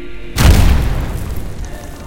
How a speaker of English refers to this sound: And this shaking has intensified to such a degree you hear explosions from just on the other side of this wall.